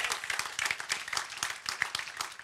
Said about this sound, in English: And come on, we can clap even better than that this morning.